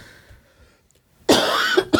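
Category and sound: human body sound, coughing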